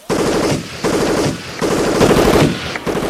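Loud, rapid bursts of automatic gunfire as police open fire in a building, rattling on almost without pause in several long volleys separated by brief breaks, with no voices audible over the shooting.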